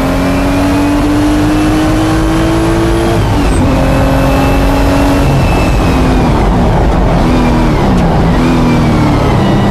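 A Porsche 935 race car engine roars, revving hard and climbing in pitch, dropping briefly at several gear shifts before accelerating again, loud and continuous with no voices.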